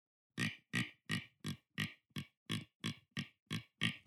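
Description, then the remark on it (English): A deer grunt call imitates a buck trotting after a hot doe: a quick, steady series of about eleven short, low, breathy grunts, each marking a step, evenly spaced, with no talking in between. “So that sounds like a buck trotting after a doe.”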